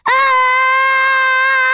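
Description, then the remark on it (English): A single loud, high-pitched human scream held steadily for nearly two seconds at a constant pitch, starting abruptly with no talking around it. “Maybe you can do the scream?”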